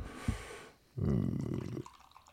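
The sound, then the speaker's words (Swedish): Beer pours from a 50-centilitre can in a steady, gurgling gush that lasts under a second before fading into a soft, foamy fizz with a lot of foam. A faint clink comes just before the pour, and no one speaks. “Alltså, det låter som när man kissar i en badsjö.”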